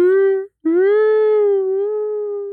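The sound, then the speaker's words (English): A person imitates a whale call with their voice: a short sustained hum, a brief break, then a longer drawn-out moaning tone that swells slightly and slowly settles, loud. “Why don't you do a whale call?”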